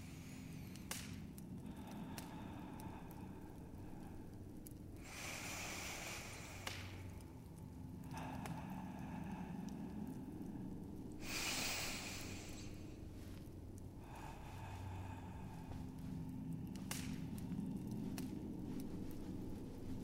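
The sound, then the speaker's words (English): A person still breathing heavily draws deep, slow, relaxing breaths in a warm room with an enormous stone fireplace, each long airy rush spaced several seconds apart, soft over a low steady background hum, with no talking. “Still breathing heavily, you spend several moments drawing deep, relaxing breaths.”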